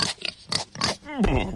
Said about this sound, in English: She ran and ran until she reached a farm. On that farm, there was a pig. E-I-E-I-O. Will you play with me, Mr. Pig?